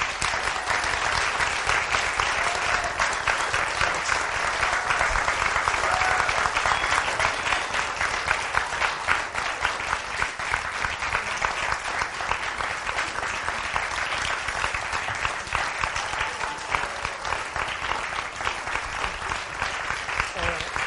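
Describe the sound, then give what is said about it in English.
Sustained applause from a large audience for about twenty seconds, a dense, steady wash of clapping hands at even loudness with no clear pauses. “So I think they deserve a round of applause.”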